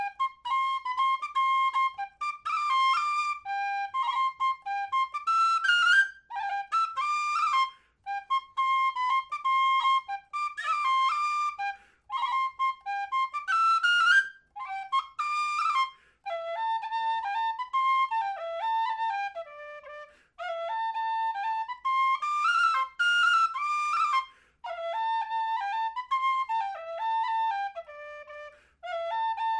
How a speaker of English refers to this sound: I think it's Braise of Mar is what you're thinking. And I'll just play it here, kind of as I remember it, on whistle to satisfy that, that ringing in your ear of, what is this tune?